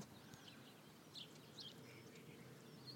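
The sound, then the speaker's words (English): Birds chirp outdoors in short, scattered bursts, fairly faint, over a steady low background hum with no one talking. “Okay, here's hear the birds.”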